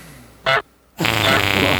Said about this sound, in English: Triple goose.